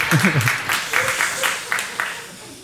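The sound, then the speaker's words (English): An audience at a church claps together in a steady, moderately loud burst of applause that holds for a couple of seconds, with a voice briefly heard over the start before the clapping carries on alone. “Some of you who just clapped have sent me emails.”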